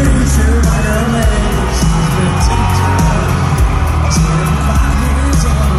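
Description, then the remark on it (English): A loud concert crowd cheers and yells continuously as Kansas City quarterback Patrick sings on stage, over booming live music with a steady thumping beat, the roar of voices staying dense and energetic throughout. “So Patrick's fiance, Brittany Matthews, caught everything on camera as the crowd cheered her husband on while he sang”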